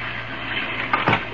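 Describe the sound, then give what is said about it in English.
Heavy rain pours down at night in a steady, dense hiss with no voices, broken near the end by two brief, louder splashy bursts. “The night was dark, and from the sky fell sheets of silver rain.”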